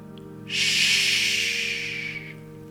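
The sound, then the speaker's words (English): A single long "shhh" hush from a human voice, a steady bright hiss lasting nearly two seconds before fading out, with a low hum underneath. “And the sound of his hushing voice reverberates in the man's ears, echoing and creating a sound like a space, like a huge space, like a cathedral space, echoing with this hushing sound, and it overwhelms him.”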